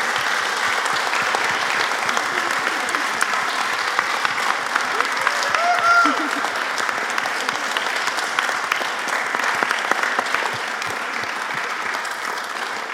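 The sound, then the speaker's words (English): Steady, sustained applause from an audience at the close of a talk at the Unfinished Conversation symposium, a dense wash of many hands clapping at an even loudness throughout, with no one speaking over it. “It's been a round of applause again.”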